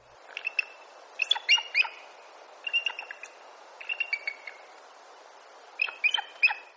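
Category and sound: bird, bald eagle calls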